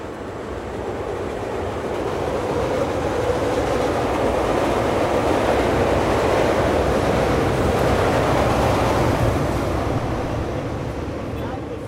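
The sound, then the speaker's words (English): A loud, continuous rumble and roar of two Chicago L trains, northbound and southbound, and a Metra train passing at once, with steady rail clatter and rushing noise filling the whole stretch without a break. “We had two L trains and the Metra simultaneously. Northbound, southbound, and the we Metra.”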